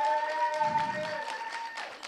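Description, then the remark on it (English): Light audience applause at a talk for the sound and media team, a scattering of claps, heard over a steady ringing tone that hums underneath the whole time. “Little applause for our sound and media team, guys.”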